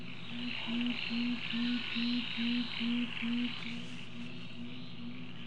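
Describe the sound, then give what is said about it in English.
A tawny frogmouth gives a low-pitched croaking call, a steady series of deep 'oom' pulses about two per second, repeated over a constant chirring of insects in the background. “So yes, the frogmouth does sound like a croaking frog, hence the name. Let's hear it.”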